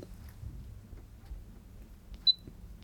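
A digital voice recorder gives two quick, high-pitched electronic beeps near the end, signalling that it has started recording, sharp and clear above a faint low background rumble, with no talking.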